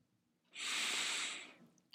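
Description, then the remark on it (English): A single long, deliberate breath as part of a controlled breathing exercise, a steady airy rush lasting about a second, fairly loud, with no talking over it. “And it all stems from controlled and regulated breathing techniques, exercises, and patterns.”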